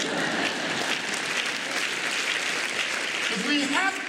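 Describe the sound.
A crowd applauds steadily for about four seconds, a dense, even patter of many hands clapping at once, with a brief voice rising just before the end.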